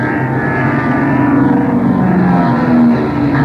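A loud, steady roar of propeller airplane engines overhead as the planes dive and zoom up, droning continuously with a slight rise and fall in pitch. No voices are heard.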